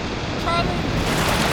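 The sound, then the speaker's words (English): Loud, continuous roar of strong wind and churning sea waves on a boat at sea, filling the whole soundscape, with a brief shout rising faintly through the noise. “He'll never hear you with all this wind.”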